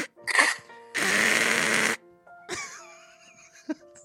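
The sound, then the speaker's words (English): A voice imitates a pterodactyl-like screech: a short rasp, then a loud, harsh, breathy shriek lasting about a second, followed by a wavering high-pitched squeal with a brief hiss at the end. “What is that noise … makes? It's like a pterodactyl.”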